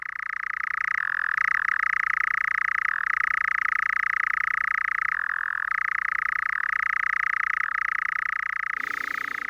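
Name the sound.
frogs croaking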